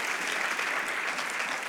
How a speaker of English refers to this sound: Another clap offering for the Lord. Amen. Hallelujah.